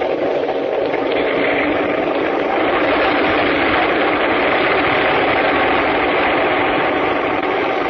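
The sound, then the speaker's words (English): A steady, loud roar of a plane's motors with a dense, even drone and no breaks, as the plane prepares to take off. No voices are heard. “Well, just as you say, dear, but I must admit that the roar of those motors always makes me a bit nervous.”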